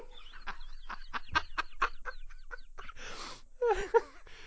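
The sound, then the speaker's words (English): A man's voice mimics a parrot, a rapid run of squawky, clucking bird-like syllables followed by a breathy rasp and a shrill squawk, fairly loud. “He's absolutely nailing the parrot voice.”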